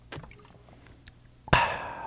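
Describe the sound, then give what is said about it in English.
A few faint wet clicks, then a louder, drawn-out wet squelch like a boot sinking into mud, with a thick sloppy texture that fades toward the end. “It sounds like a boot in mud.”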